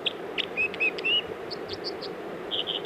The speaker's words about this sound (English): Clear, clear water, just above that water, now fluttering down off a little perch is the bird making that song. It's called the dipper or the water ouzel.